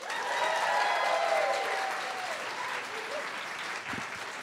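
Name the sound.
audience applause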